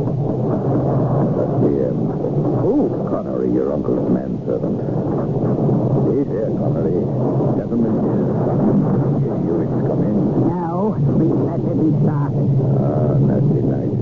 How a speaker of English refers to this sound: 9 o'clock. 10 o'clock. And then the storm.